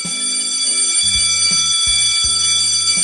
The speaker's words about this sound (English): That's the bell, signifying it's time to wrap the show.